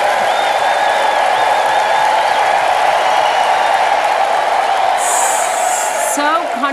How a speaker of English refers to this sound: We're going to have some stadium applause at that moment